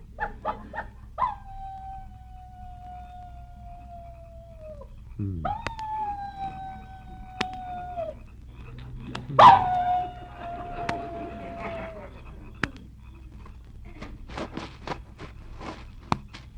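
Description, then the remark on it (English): A person imitates a coyote with three long, sustained howls, each rising sharply then holding a steady wavering pitch, separated by short pauses, followed by faint clicks and rustling. “How'd you like my imitation of a coyote?”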